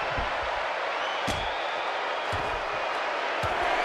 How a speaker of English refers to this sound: Oh, boom. With a huge slam on the outside. And folks, that mat that you see them fighting on right there is only about an inch thick underneath that concrete. So there's no messing around on the outside of the ring.